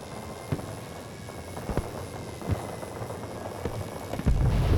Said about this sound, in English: Oh shit, here comes a chopper. It's a plane.